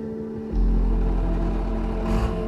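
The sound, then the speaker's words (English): A heavy vehicle engine idles, then surges loudly at about half a second into a strong, steady low rumble as it drives out of a mine's mechanic shop and down the ramp, with a brief rise in pitch near the end. “He flourishes his hand like a showman and takes a bow, then drives out of the mechanic shop and down the ramp.”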